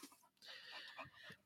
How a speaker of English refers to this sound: So, since we've been interrupted by this dog here who's been panting and chewing on bottles the entire time, I've decided that I'm going to tell the story of how we got him.